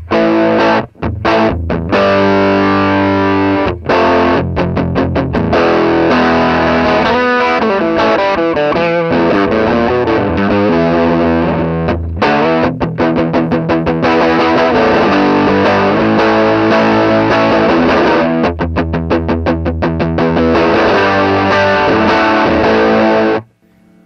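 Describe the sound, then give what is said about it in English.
A distorted electric guitar with a new pickup and a single stop tailpiece plays loud, gritty chords and riffs for about twenty seconds. It has a bright, growling top end and short stops between phrases, with no voices present. “And it doesn't sound exactly like the old pickup, but I kind of like it even more. It has a little bit more top end in a way.”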